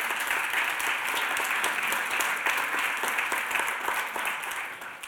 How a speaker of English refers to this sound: But, we give God a clap.